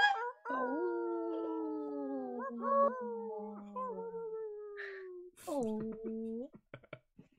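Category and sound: vocal imitation, people imitating wolf howls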